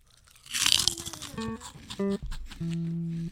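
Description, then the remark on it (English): A single loud, crisp crunch of someone biting into a shrimp chip, followed by a few short, steady humming tones. “And then it was a final crunch.”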